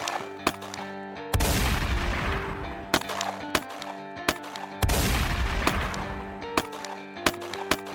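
Gunfire exchange at the back entrance of a bank between police officer William Remo Cody and Billy Burt, with sharp single shots cracking at irregular intervals and two sustained roaring bursts of fire. It is loud, with no voices.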